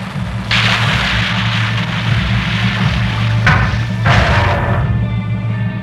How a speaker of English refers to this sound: I have them on sonar, Batman! Nice work. Prepare to fire magnetic underwater grapple. Ready. Fire!